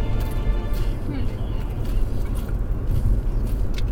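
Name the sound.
car interior ambience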